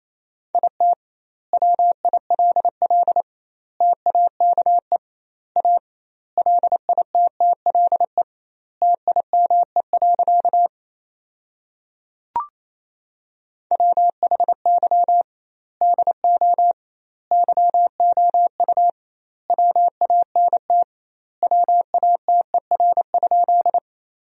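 Morse code sent at about 28 words per minute with double word spacing, sending sentences built from the top 200 words: a single mid-pitched tone keyed in rapid dots and dashes, grouped into words with pauses between, and one sharp click near the middle.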